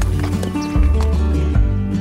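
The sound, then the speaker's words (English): Horses at a place with 20 head of horses, with a couple of heavy hoof thuds about a second apart over a steady low rumble and soft snorting, no one talking. “She really has to work double, twice as much as someone else to raise me, and we got 20 head of horses around here and 40 head of cows, and it's hard to do everything around here just one person.”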